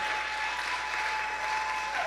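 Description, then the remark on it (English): An audience claps in a dense, steady wash of applause for about two seconds, with no clear individual beats. A faint sustained tone hums underneath, and nobody speaks. “Let me say this about all the people who don't clap that hard.”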